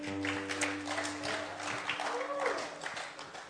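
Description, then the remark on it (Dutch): An audience in Almere applauds steadily for the band, a dense wash of clapping that holds for several seconds, with a low sustained musical tone fading out partway through. “Geweldig, laten we de band een applaus geven.”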